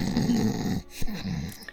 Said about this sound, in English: Light from a tall window spreading onto the silhouette of a sleeping figure, her chest rising and falling with loud snores.